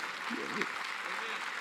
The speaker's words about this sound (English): Do y'all see how the claps are getting lower and lower and lower?